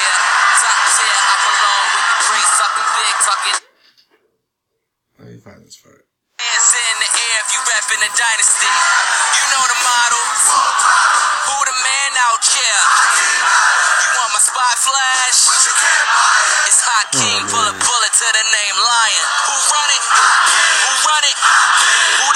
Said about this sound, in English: Okay, so they're all just chanting in perfect unison, like yeah, no crowd would ever do. I mean, perfectly doing his ad-libs. Yeah, they're doing like every other line of the song.